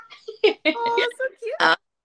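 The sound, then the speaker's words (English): A pet cat named Simon screams in a series of loud, strained yowls, several uneven bursts with harmonic, wavering tones and brief gaps between them. “My cat is screaming.”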